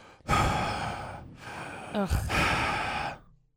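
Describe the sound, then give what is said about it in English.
Three heavy, breathy rushes of air in and out through the mouth into a phone, loud, with a brief throaty catch between the second and third breath. “Which is not so much scary as it is annoying. Mouth breathing is very annoying.”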